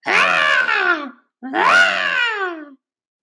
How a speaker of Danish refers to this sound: Med en enkel ildfakkel rammer Mortang guldgåsen, der giver sig til at væse og skrige op.